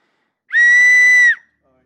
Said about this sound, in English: Okay, so when the whistle blows, your time will begin. Are you ready?